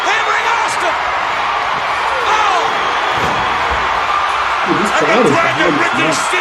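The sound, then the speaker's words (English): A capacity crowd at a WCW event in Jacksonville roars loudly and steadily for wrestler Steamboat's entrance, a dense wash of cheering and shouting with scattered voices rising above it and a few sharp thuds. “Listen to this explosion! Oh, boy, yeah. Big pop for the Steamboat.”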